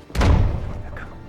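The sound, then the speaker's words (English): A door slams shut once with a sharp crack and a heavy, booming low thud that rings out and fades over about a second. “Oh, goddamn door, Vicar!”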